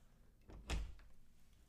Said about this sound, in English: And I hear like, go ahead and open that door.